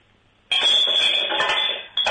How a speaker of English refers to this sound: I accidentally knocked over this ceramic Martin Short bobblehead.